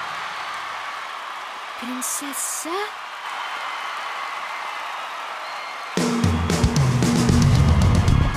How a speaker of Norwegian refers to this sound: Nok en gang, gi en stor applaus for Vanna Banana!